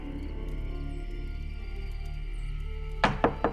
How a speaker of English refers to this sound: Early the next morning, I awoke to the incessant pounding of a fist against the front door of my home.